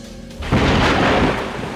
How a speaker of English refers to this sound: The crackling sounds of thunder and lightning briefly jolt her awake.